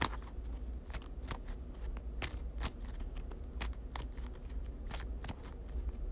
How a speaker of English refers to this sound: Shuffle, shuffle.